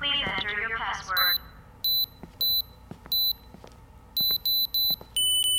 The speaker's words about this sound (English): Let me just turn the alarm off.